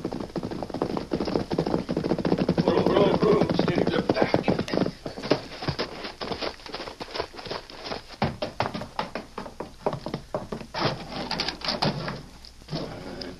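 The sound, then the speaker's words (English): A series of sharp knocks on a wooden door, fairly loud, tapping out in uneven bursts over several seconds after a brief stretch of muffled background activity. “As soon as they get inside, you go up and knock on the door.”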